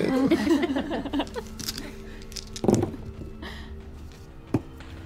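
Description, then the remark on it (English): A large number of dice, rolled for cold damage in a tabletop role-playing game, clatter and rattle across a tabletop, then a few scattered clicks follow as they settle. Faint voices murmur underneath. “That's a lot of dice.”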